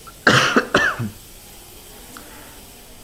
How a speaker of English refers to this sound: speaking of fresh air, the air is not very fresh in here, and there is a little bit of I don't know what that is over there, but it definitely smells funky, and it's not the freshest, so I am coughing a little bit.